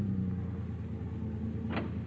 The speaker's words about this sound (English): Finally, you bring the car to a stop in front of Tommy's boarding house.